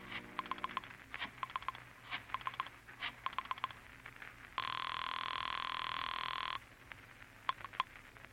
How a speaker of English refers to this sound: Once you reach your apartment, you dial Julie's private phone at the club.